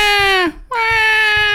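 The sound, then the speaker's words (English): A loud video game sound effect of Baby Mario crying in Yoshi's Island, heard when the player gets hit: two sustained, piercing wails separated by a brief gasping pause, with no talking over it. “If you got hit in Yoshi's Island, you'd have to deal with that.”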